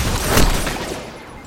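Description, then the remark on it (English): A heavy gunshot blast from a video game hand cannon cracks out over a dense, noisy background of battle sound, loud, then trails off into rumbling chaos. “Like, it's not the auto rifles that are eating me up, it's these hand cannons. These hand cannons are eating me up before I have a chance to even do anything, really.”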